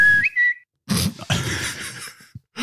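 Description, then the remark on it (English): A person whistles a brief, rising two-note whistle, clear, lasting about half a second, followed by a few loud, breathy bursts of vocal noise. “What about your whistle? We haven't had one tonight.”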